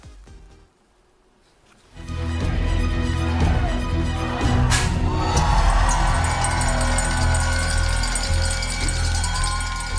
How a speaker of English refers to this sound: Smiling, cheering and clapping. That's chip designer Arm ringing the opening bell there at the Nasdaq. The ticker tape is flying.